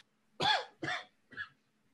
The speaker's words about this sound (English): Oh man, still got this cough hanging around. It's killing me.